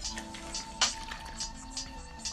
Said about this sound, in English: Let me get some water. I need to calm down my nerves.